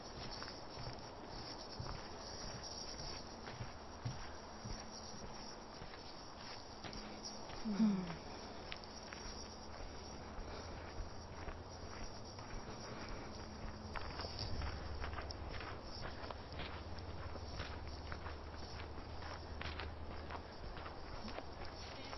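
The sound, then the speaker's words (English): Steady footsteps thud hollowly across the wooden planks of a small wooden bridge at a walking pace, with a brief louder knock partway through and a low rumble building toward the end. “Another little wooden bridge.”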